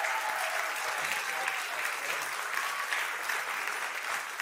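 Sustained applause from an audience welcoming a speaker, a dense steady wash of clapping hands at a fairly loud, even level throughout, with no clear individual claps standing out.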